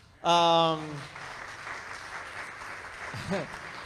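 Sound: audience applause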